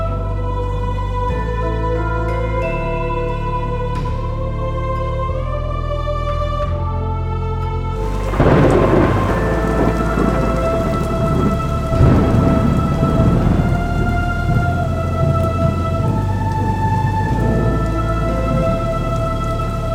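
A sustained musical tone plays alone at first, then a heavy rainstorm surges in beneath it, with deep thunder rumbling steadily through the hiss of rain.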